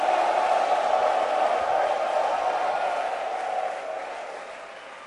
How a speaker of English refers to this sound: Clap your hands for Jesus and give the Lord a shout.